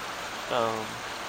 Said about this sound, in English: Here comes the rain again.